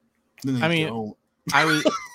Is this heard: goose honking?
no